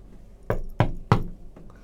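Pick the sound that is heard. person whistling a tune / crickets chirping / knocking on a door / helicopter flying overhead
knocking on a door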